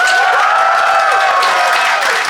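An audience applauds steadily to vote for who is in the right, dense overlapping claps forming a loud, continuous wash of sound with no talking over it.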